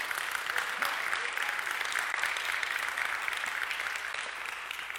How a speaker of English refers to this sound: You guys deserve the applause, but it would just be me up here smacking my hands together. It would look kind of weird, but thank you for that.